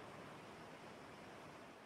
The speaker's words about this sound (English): You can hear the waves rolling in the distance.